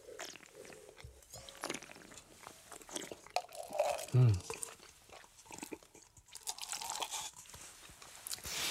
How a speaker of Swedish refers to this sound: Nu låter jag, du stänker i våra spottkoppar här. Och som lyssnar för undrar, men det där låter ju inte speciellt bra. Jo, det gör det. Men det är ädla droppar som åker rakt ner i porslinet här.